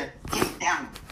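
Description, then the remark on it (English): A black female puppy named Gangster lets out two quick, high-pitched whining yelps, one right after the other, fairly loud against a quiet background. “Get down, gangster puppy. Get down.”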